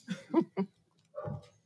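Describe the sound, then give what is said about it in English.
Dogs bark in a quick burst of three, then one more after a short pause. The barks sound somewhat muffled and moderately quiet, with no talking over them. “Oh, there's dogs barking.”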